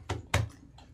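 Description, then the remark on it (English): Two firm knocks on a door land close together, each a sharp hollow thump, followed by a fainter tap. Fairly loud, with no voices. “I'll knock the door.”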